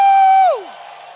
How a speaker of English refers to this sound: Oh, clap your hands and give the Lord a shout offering.